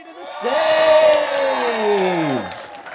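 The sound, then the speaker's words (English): A rowdy crowd of about 140 people cheers and roars loudly for about two seconds, with a prominent drawn-out whoop sliding downward in pitch over the dense noise before it fades. “It was a very rowdy crowd, which you'll get to hear when we talk about the second act.”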